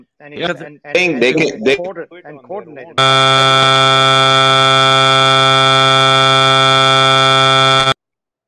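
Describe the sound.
People talk briefly, then a loud, harsh phone call alert buzz starts and holds one steady, unbroken pitch for about five seconds before cutting off abruptly.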